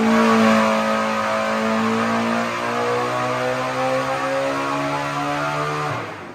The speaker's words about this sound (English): I think that was about 9,100 RPM or something. Yeah, I was about to say, that's 20 pounds of boost at 9,000 something RPM, just 1,200 something horsepower, you know?